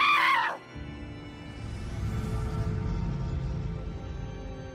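A woman's loud, high-pitched scream bursts out briefly at the start and cuts off after about half a second, giving way to a steady, low rumbling noise.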